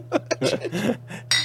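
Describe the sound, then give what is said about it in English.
Glass bottles clink together in a cheers toast, a bright ringing knock near the end after a few duller taps and rustles, over a low steady hum; one drinker half drops his bottle. “came over to cheers us, half dropped his bottle”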